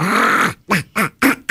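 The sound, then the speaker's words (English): A person imitates a squirrel's call with a voice: one drawn-out nasal honk followed by four short, quacking bursts in a quick, even rhythm, fairly loud with no other talking. “If you stood right here outside of High Falls and started doing your quack, quack, squirrel talk...”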